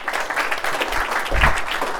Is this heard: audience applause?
yes